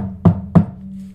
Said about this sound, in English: At the front door. My initial reaction was, what the hell, really? It's almost 10 p.m. Go home. But soon an uneasy feeling came over me. Why the knock?